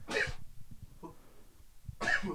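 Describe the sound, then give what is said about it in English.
Two sharp, explosive sneezes about two seconds apart, loud, with a quiet, breathy pause between them. “Bless you.”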